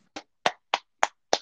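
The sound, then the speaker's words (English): Six sharp hand claps in a steady rhythm, roughly three per second, the last two coming quickly together. Loud, crisp and alone, with no talking. “Episode number Clap it 10.”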